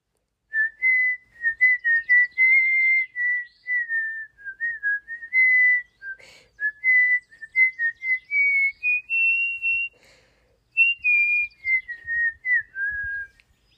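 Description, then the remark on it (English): A person whistles a familiar song alone, with clear, sustained notes rising and falling in a steady phrase-by-phrase rhythm, a brief pause near the end before the melody resumes. “I look up to find … joyfully whistling away a familiar song.”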